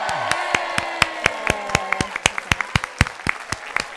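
Applause from a small crowd: sharp, uneven claps in a steady patter, with a few faint voices and a brief whoop mixed in early on.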